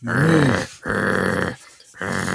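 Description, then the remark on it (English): Two police dogs wearing medals growl in three rough, sustained bursts separated by brief pauses, the deep rumbling loud with no one talking. “Make way for the two hero police dogs that took down that woman the other day.”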